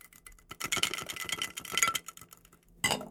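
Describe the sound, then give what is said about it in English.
Two or three ice cubes with a little water swirl and clink inside a martini glass to chill it, a rapid patter of bright tinkling clicks that swells and fades, ending with a short louder rattle. No one speaks. “Swirl it around and then let it sit while you're making the drink.”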